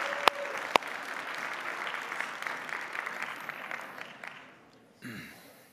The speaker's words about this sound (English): You may be seated. Yeah, I think that deserves a clap.